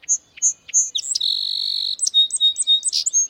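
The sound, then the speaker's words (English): A song sparrow sings clear: a few crisp introductory notes, a sustained buzzy trill, then a quick jumble of bright chirps and whistles, with no voices. “Almost anywhere in the United States, you can hear the song sparrow.”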